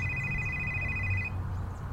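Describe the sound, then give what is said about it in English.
A telephone rings with a steady, high electronic tone that lasts just over a second and then cuts off, over a low background rumble with no one speaking. “Answer the phone.”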